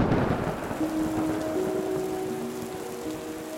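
Steady rain hisses throughout in a forest while a low rumble of thunder rolls at the start, with soft sustained musical tones drifting underneath.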